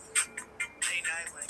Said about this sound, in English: I'm going through my ringtones. I got a lot of them.